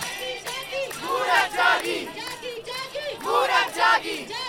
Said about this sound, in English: So protesters burst through. As they gather, they clap to music. They chant, "Women have woken up."